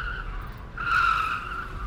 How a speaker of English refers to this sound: Vanishing amidst the evening traffic, Elliot's black Ford Mondeo weaved its way 7 miles southeast and roared up a patch of wasteland off Lunnon Road in Upper Norwood.